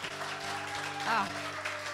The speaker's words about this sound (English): You're awesome, sunshine. Another round of applause for her, y'all.